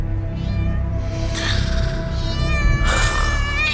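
A cat meows in long, drawn-out wails, two strong cries rising and falling, with a low steady rumble underneath and no talking.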